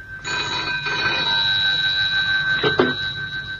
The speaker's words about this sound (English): I couldn't sleep, and so answered at once when the phone rang by my bedside.